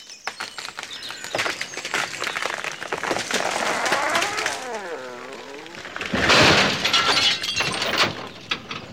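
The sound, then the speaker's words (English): A loud, drawn-out crash of splintering wood and breaking glass as a tree comes down onto a car, with a creaking groan midway and a heavy final impact. “It's just fallen on your car.”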